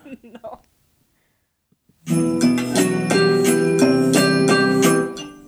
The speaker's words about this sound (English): There was a bell at the beginning. Yeah, there was a bell.